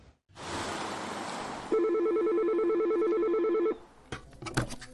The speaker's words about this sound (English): The phone started ringing a lot more than usual Tuesday morning, the day after Juneteenth.